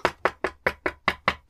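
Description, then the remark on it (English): A rapid run of about seven evenly spaced knocks, crisp, each a sharp rap that fades quickly, with no talking over them. “Who is it?”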